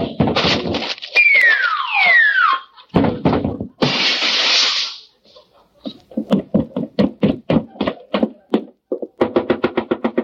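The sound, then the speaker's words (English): A cartoon-style fall as someone jumps off a table and crashes through a weak spot in the floor: a descending whistle, then a loud, noisy crash, followed by a run of rapid wooden knocks and clatters as debris settles, loud with no talking. “Watch me. I'm going to jump off of the table. No, no, don't jump. There's a weak spot in the floor.”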